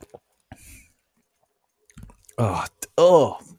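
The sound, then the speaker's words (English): A short, quiet sip of Athletic Brew Company's Run Wild non-alcoholic IPA with faint wet mouth clicks, followed after a pause by loud, drawn-out vocal groans. “First sip.”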